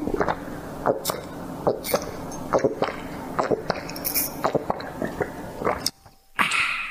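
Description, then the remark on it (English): Pinot Gris wine being sipped right up against the microphone: a close, wet run of slurps, smacks and small mouth clicks repeating irregularly for several seconds, with no talking. “You mind if I take a little sip there?”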